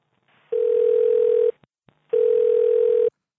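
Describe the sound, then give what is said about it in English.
Two long, steady telephone tones, about a second each, separated by a short pause with a couple of faint clicks, like the line tone after a call drops. Fairly loud, no voices. “We must have got cut off.”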